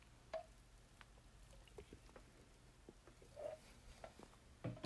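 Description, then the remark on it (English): Faint, scattered ticks and tiny pops like fizzing bubbles in a glass of sparkling water, ending in a brief sip-like gulp, with no talking. “Sparkling water.”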